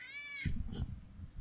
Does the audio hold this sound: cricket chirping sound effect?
no